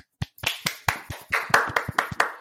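A short burst of hand clapping, quick and slightly uneven sharp claps, like a few people applauding together for a couple of seconds with no talking, to welcome a guest.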